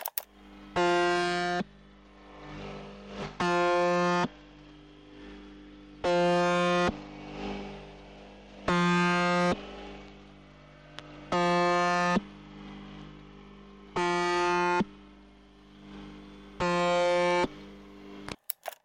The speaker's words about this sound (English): And they include the Russian UVB-76 station known as the Buzzer. And again, that's a nickname by shortwave radio station listeners. And that has a monotonous buzz tone sound to it.